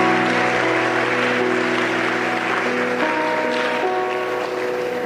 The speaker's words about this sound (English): Clap for Jesus. Palmas para Jesus.